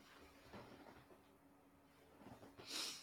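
A dog breathing irregularly, with faint uneven breaths followed by a sharper, louder snorting huff near the end, otherwise quiet.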